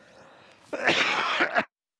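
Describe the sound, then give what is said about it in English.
A loud, raspy cough from a speaker delivering a message bursts out after a brief quiet moment, lasting nearly a second with a rough, throaty edge before stopping abruptly. “I almost made it through the message without coughing.”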